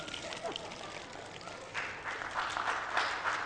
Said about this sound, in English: I need more. I need more. Come on, clap.